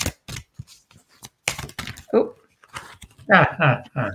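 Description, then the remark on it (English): Papery riffling of oracle cards being shuffled comes in a few quick bursts, followed by a voice speaking near the end. “So light shuffling, light shuffling, light shuffling.”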